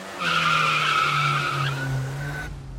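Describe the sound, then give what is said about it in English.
A manual-transmission car takes off with a loud, sustained tire squeal lasting over a second as the clutch is released, then the engine keeps revving as it pulls away, with no voices. “Okay, drop the clutch, move the stick in the first, then slowly release until you engage the engine.”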